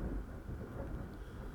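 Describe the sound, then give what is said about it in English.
A low rumble of thunder rolls steadily through the whole moment, deep and muffled rather than sharp, fairly quiet, with no voices over it. “Huh. Thunder. Thunder. I hope you guys heard that.”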